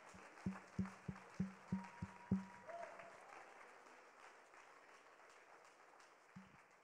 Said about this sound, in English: One more time, let's give the Lord a round of applause.